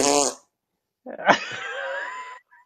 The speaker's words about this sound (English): A shot for the ages, a fart for the ages.